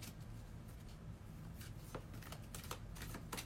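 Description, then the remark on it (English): Cards being shuffled, not shuffling smoothly: a soft papery riffle broken into several quick, uneven bursts of flicking and slapping over a few seconds. “Boy, these cards just don't want to shuffle tonight.”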